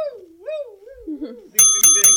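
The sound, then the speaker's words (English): A bell is struck three times in quick succession, each hit a bright, ringing clang, following a soft wavering tone that rises and falls. “I smash a bell.”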